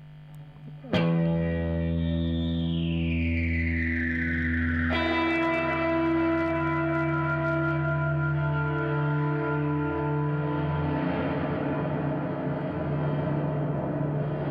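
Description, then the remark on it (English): A guitar played through a reverb pedal's gong setting: struck notes bloom into dense, metallic, shimmering overtones with a descending swoosh, then a second hit sustains in a long wash with no talking. “Well, there's one more setting, Big Hungry. Don't go too far. We've got the gong.”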